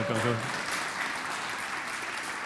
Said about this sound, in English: By the way, you didn't clap nearly enough for hundreds of people getting saved and baptized.